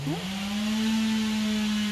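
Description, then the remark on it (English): Several chainsaws run outdoors in a backyard, the engine drone climbing briefly in pitch at the start before holding a constant buzzing whine throughout, with no talking. “So we're outside in my backyard with a little fire going, and there's some dueling chainsaws.”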